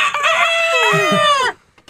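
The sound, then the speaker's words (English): A person loudly imitates a rooster's crow as a rooster-man town crier in a town square, one drawn-out wavering cock-a-doodle-doo delivered on its own, ending abruptly in near silence. “The man rooster town crier in Proud Prosperity goes into the square.”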